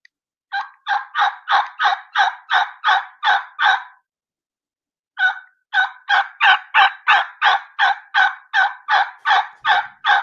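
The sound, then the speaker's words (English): A turkey call sounds two long runs of rollover yelps, rapid and evenly spaced, loud, each note with a slight click or hitch in its middle, separated by a brief pause. “You hear the high, and you're going to hear a little click, a little hitch right in the middle of it. And this is going to be called a rollover yelp.”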